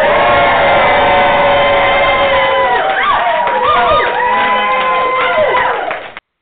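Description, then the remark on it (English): A crowd of 50-plus people in a standing-room-only room at a 2018 horror convention panel in Atlanta cheers loudly and continuously, with overlapping whoops and high-pitched shouts rising and falling throughout, dense, ending abruptly. “Did you hear that crowd? Yeah, they loved you.”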